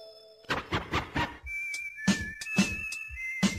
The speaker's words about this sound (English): His mom blew a whistle. I don't even know if she cared how much we tortured him because his mom blew a whistle for him to come home.